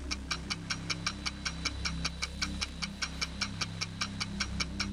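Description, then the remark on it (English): A steady, evenly paced ticking game show countdown clock with 8 seconds left, about four ticks per second, crisp, running alone over a low sustained tonal hum. “8 seconds left on the clock.”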